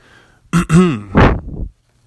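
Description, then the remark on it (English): A loud throat clearing: a voiced, gravelly rumble followed by a harsher rasping push, lasting about a second, with no talking around it. “Let me clear my throat.”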